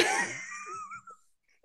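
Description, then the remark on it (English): A single sneeze bursts out in a sudden, breathy blast, then trails off into a thin, wheezy whistle that fades within about a second, leaving near silence. “Why'd you I sneeze like that?”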